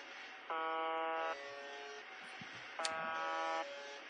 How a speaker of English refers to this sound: That's a foghorn. It's annoying, right? A little bit. Yeah. So now imagine listening to that for hours or days or weeks or years. No. I'd go crazy. That's an annoying noise.